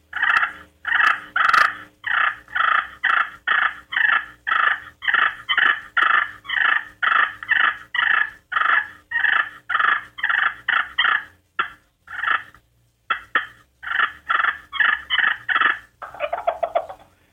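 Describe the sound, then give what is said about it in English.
A slate friction turkey call, the Margaret Slate call, works out a long run of loud, aggressive purrs like those turkeys make when fighting: short rolling bursts repeated at a steady quick rhythm, with no talking over them. “It sounds like this. This is aggressive purrs.”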